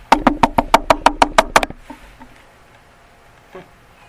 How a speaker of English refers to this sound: I'm not going anywhere. I'm going to knock for a while. Then I'm going to start kicking.